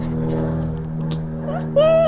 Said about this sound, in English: Oh, and it stopped. Cicadas and a plane at the same time. Brilliant, sorry.